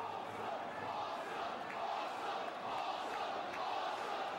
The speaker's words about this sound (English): Crowd fucking loved him too. Yeah. Awesome chant.